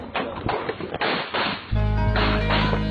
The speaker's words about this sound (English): In the video, you can hear 30 gunshots in a 22-second span.